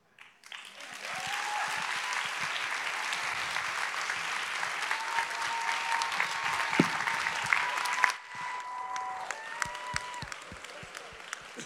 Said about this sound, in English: Why don't we keep this round of applause going as we welcome Kira.